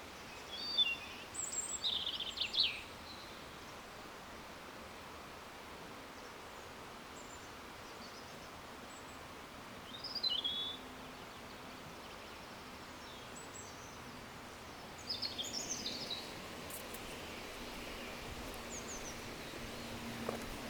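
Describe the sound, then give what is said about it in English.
Quiet outdoor ambience with a few scattered clusters of birds chirping and singing, separated by stretches of soft, steady background hiss; no voices. “What can I convey to you that these birds don't convey 100,000 times better?”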